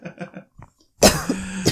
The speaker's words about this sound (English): I want to stop coughing so bad. I know, you were coughing last week's episode. That's how long you've been sick.